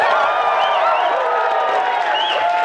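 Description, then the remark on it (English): A live studio audience cheers and applauds loudly and steadily, with whoops and high shouts riding over a dense wash of clapping for a few seconds. “And a live studio audience that will make some noise.”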